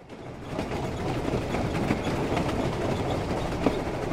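A moving train carriage rattles steadily along the rails in the early morning, a continuous dense rumble with faint clicking from the wheels, heard from inside at a constant, fairly loud level with no voices.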